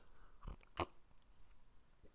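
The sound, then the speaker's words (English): A quick slurp from a drink, two short wet sipping bursts in quick succession, then quiet background with no talking. “Excuse the slurp.”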